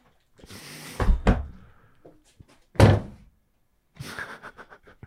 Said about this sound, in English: Hold on. There are pigeons attacking.